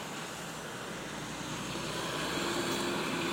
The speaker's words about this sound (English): Comes a dump truck.